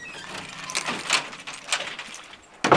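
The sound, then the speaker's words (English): Keys jangle in several short metallic bursts, followed by a louder clunk and rattle as the front door of a home is unlatched and pulled open. No one speaks. “I'm just about to open the front door.”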